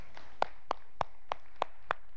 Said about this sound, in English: And I want to thank our audio video team so much. They do a great job helping you get the verses there on the screens. Let's give them a round of applause, would you?